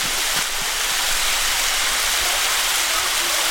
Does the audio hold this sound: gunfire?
no